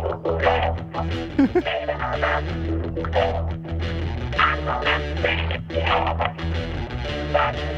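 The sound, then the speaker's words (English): A rock electric guitar plays continuously with a thick, bass-heavy tone and washy, echoing reverb, loud and dense throughout, with no voices over it. “The guitar had too much bass and too much reverb.”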